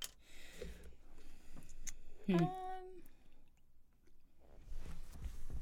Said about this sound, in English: I'm sorry if y'all just heard me gulp my water. I just realized I'm right here by the mic. I tried to back up.